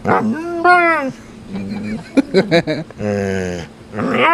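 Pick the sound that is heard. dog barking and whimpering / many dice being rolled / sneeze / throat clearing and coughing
dog barking and whimpering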